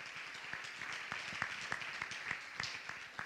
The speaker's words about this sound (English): Anybody want to see somebody in your life come to the Lord? Would you clap your hands if you want to see that happen?